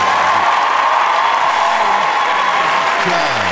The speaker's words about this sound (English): Y'all can't hear this. We're going to give y'all a round of applause.